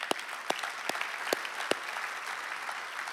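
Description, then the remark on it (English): An audience applauds with a dense, steady patter of many hands clapping, a few sharper, louder claps standing out in the first couple of seconds. No one speaks. “And that's, yeah, we can clap for that.”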